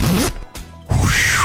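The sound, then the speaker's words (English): Two rasping zipper pulls separated by a short pause, the first brief and the second longer with a rising-then-falling whir, fairly loud with no talking. “Country girl, zip it for me, girl.”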